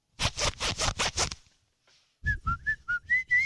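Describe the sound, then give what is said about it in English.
Six quick, rhythmic zipper pulls rasp loudly, then after a short pause a zipper zips again in bursts while a whistled melody rises and falls alongside it, as a person zips and whistles at the same time to play a song. “Maybe your zipper's out of tune.”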